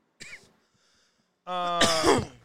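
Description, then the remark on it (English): A short, sharp cough, then after a pause a longer, louder rasping cough with a throaty, strained edge, prominent with no talking around it. “We need the cough button, champ.”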